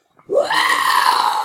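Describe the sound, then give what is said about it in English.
A person imitates a tiger roar with one sustained, raspy growl that starts abruptly and holds loud and steady for over a second, breathy and strained in tone. “That's a good tiger sound.”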